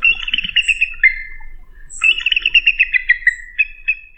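A pileated woodpecker calls in two loud, rapid bursts of repeated ringing notes, separated by a short pause, with no voices.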